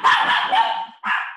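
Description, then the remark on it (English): A dog at home, having heard the door, barks in a sustained, high-pitched burst that wavers for about a second, stops briefly, then starts again with another sharp yelp. No one speaks. “You can tell I'm at home. Yeah. He wants to join in. She heard the door go.”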